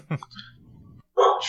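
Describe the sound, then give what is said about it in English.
A dog lets out two short, sharp barks, the second louder and longer, with a low murmur in between. “Really, and hello to that dog. I want to say a big hello to that dog.”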